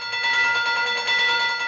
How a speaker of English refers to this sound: Train bell.